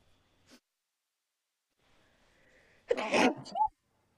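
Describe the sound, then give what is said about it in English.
A single loud sneeze bursts out after a quiet lead-in with a faint sharp intake of breath, ending abruptly with a short trailing exhale. “You can continue because you can obviously edit my sneeze out.”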